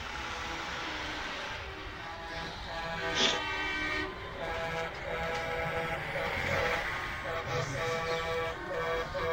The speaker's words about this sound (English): So it's about 10 a.m. in the Arizona desert, the second day of the trucker convoy. And the trucks are leaving, and they're on their way to New Mexico. They're getting hundreds of goodbyes from supporters.